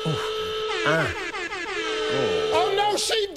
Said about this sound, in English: it is time for me to sound the Home Entertainment Top Tablet and Unforgettable Experience Bundle alarm. Yes. Wait till you listen to this, the bad boy.